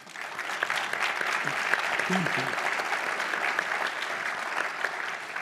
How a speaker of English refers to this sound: So I just want to first give a round of applause.